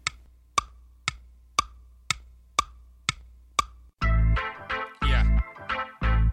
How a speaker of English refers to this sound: The clock is ticking!